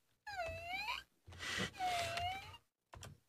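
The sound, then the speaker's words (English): A voice mimics a squeaking chair: two drawn-out, high, whiny creaks that bend down and back up in pitch, then a brief fainter squeak at the end. “when we were talking about the chair, the squeaking chair part was the part that got you the most, and I have to agree with you on that, right?”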